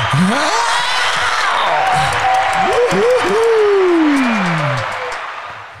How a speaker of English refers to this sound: There's a crowd clap somewhere there.